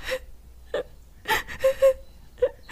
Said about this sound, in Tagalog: Teka, bakit ka umiiyak? Ano nangyari sa'yo? Magsalita ka! Ano nangyari sa'yo?